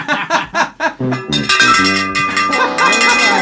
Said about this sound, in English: is that the bell of truth?